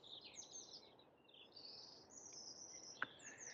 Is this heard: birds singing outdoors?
yes